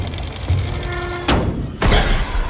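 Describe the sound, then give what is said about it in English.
A heavy hatch is flung open with a sharp wooden bang, followed a moment later by a second loud thud as it lands, over a low steady hum. “Without saying nothing, he turned away from me and threw up the hatch.”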